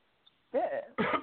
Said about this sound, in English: Hey, everybody. Coughing a little bit, but I'm good.